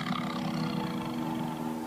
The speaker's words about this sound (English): It's a tiger. That's it. You got it.